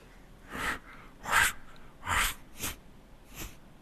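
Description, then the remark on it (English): A person imitates a wild boar with a series of five loud, breathy snorts and grunts, spaced irregularly, with no talking. “A wild boar.”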